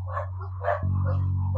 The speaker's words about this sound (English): A bunch of dogs run up to the car and start attacking. It's Raymond's dogs.